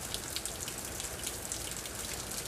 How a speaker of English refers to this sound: The wonderful rain connecting the heavens and the earth.